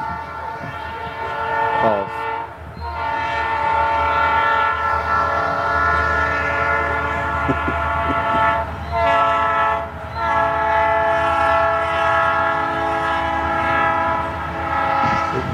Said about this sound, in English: Train tracks over there. Is it coming this way or is it going away? Does anybody know?